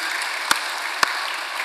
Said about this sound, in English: I'm clapping for the Lord, and I'm saying thank you to you.